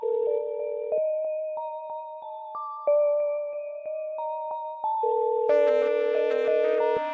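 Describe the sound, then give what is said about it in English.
A telephone ringback on an outgoing cell phone call that rings several times before going to voicemail: steady, clear electronic tones that hold and step between pitches for several seconds, fairly loud and alone, with no voices. “She dialed the only number she knew by heart. It rang several times, going to voicemail.”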